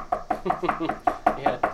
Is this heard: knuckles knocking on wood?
yes